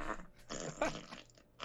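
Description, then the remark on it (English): Fart sound effects play from an Alexa smart speaker asked to fart 100 times in a row, one buzzy, sputtering blast after another with brief gaps between them, fairly loud and with no talking over them. “Alexa, fart 100 times in a row.”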